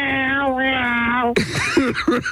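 A cranky cat riding along in a car yowls in one long, slowly falling wail, then breaks into several shorter, warbling cries, loud.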